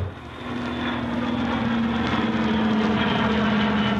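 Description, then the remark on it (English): The propeller engine of an Aer Lingus plane touching down at Shannon drones loudly and steadily, a constant low hum with a rough, throbbing texture that swells slightly after the first half-second. No voices are heard. “And when the plane touched down at Shannon on the way out, Arthur Quinlan met some of the distinguished passengers.”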